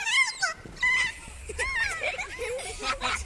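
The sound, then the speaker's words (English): A kea's play call: a series of bright, warbling parrot notes that rise and fall in pitch, coming in several quick bursts with short gaps between them. “Scientists think the play call had an emotional effect on the birds.”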